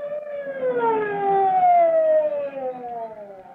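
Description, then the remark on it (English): Chief Cody's fast car pulls up at the alarm box, its fire chief's siren wailing with a steady, slowly falling tone and stacked harmonics, sustained loudly for several seconds over a low rumble of engine noise. “Chief Cody's fast car pulls up at the alarm box where Sandy waits to direct the fireman.”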